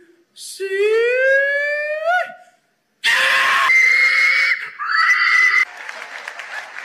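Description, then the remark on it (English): Hog calling to a pig: a loud, drawn-out human holler that swoops upward in pitch, a brief pause, then a harsher, strained, higher-pitched call in two bursts, trailing off into faint background noise. “So that's hog calling for you.”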